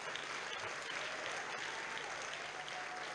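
crowd, audience clapping

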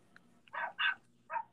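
animal, dogs barking

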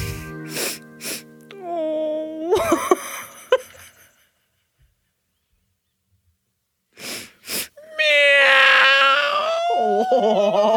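animal, cat meowing

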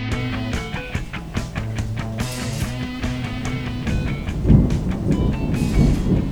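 nature, thunder rumbling

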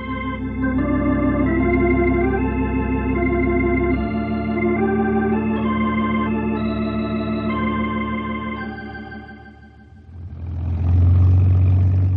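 vehicle, small airplane engine running

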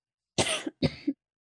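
human body sound, cough and throat clearing

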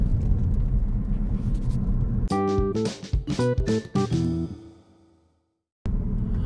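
vehicle, car interior rumble

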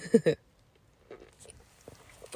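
food or drink, sipping coffee

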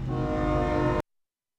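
vehicle, train passing with horn

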